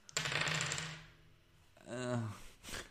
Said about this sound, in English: These dice have a tendency to roll very high.